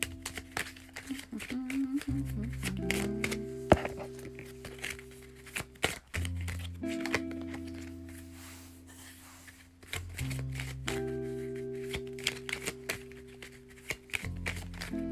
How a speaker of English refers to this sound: Make a wish. I'm shuffling your cards.